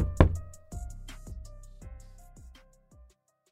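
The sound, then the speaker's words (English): About seven hollow knocks on wood in an uneven, gradually slowing series, fairly loud at first, then fading softer toward the end, with no voices. “Knock on wood.”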